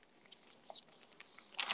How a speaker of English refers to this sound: You know who's going to eat a Sun Chip right now? Sorry. Would that be the guy I'm on the fucking line with or what? Yo, pull the mic away. I love hearing people like crunch in my ear. It's my favorite.